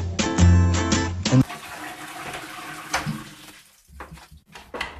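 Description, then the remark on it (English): A person urinating into a toilet: a steady, hissing trickle of liquid splashing into water that wavers and thins toward the end, after a brief burst of tonal, music-like sound at the start. “I'm warning you, I'm gonna pee now, so if you don't wanna listen, it's fine.”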